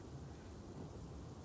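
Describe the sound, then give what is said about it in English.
A steady storm with rain falling: a dense, constant hiss over a low, grumbling rumble, holding an even loudness throughout with no voices. “I should probably, like, go to therapy about it or something, but I can't do that right now because the storm's happening, so can you just, like, hold me?”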